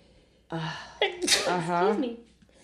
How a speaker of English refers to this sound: Excuse me. Bless you.